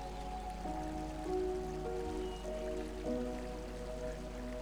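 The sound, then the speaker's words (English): A quiet, steady wash of crystal-clear stream water flowing around large flat rocks, continuous and soft throughout, with gentle sustained tones humming underneath. “The water gently flows around the large flat rocks at the surface.”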